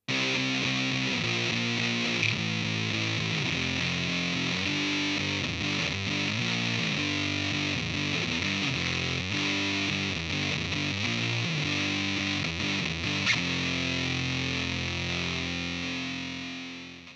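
An electric guitar through a fuzz pedal set with level at 2 o'clock, tone at 2 o'clock and sustain all the way up plays a heavy riff of thick, buzzing notes that hold and blur together at a steady loud level, tapering off at the end.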